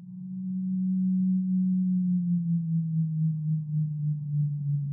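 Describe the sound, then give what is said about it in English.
A single deep, steady underwater moan from a Rice's whale, a low tonal drone that slowly sinks in pitch and holds for the full five seconds without a break. “The whales can moan like that for a minute without stopping.”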